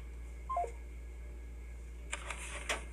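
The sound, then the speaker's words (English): A short electronic voicemail tone steps downward, followed after a pause by a few sharp clicks as the phone call is ended. Fairly quiet, with no talking. “person 260 does not answer at the tone, leave a message.”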